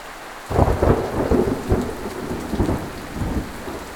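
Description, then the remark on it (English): Steady rain pours down while a deep rumble of thunder rolls in and lingers, loud, with no voices. “Come get yourself out of that nasty rain.”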